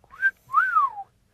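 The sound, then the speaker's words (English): A two-part wolf whistle catcall, a short rising note followed by a longer tone that swoops up and then glides down, clear with no talking. “The cat call.”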